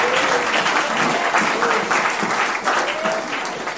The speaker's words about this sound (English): I was told that we've got a new drummer in the house. Doesn't he deserve a round of applause?